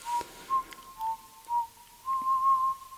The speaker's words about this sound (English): I've made up a tune for you. Would you like me to whistle it for you? I will.